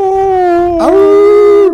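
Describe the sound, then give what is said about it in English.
A loud, sustained dog howl in the background carries steadily with rich harmonics, briefly breaking and rising in pitch midway before continuing and tapering off; no talking. “I'm hearing a howl in the background.”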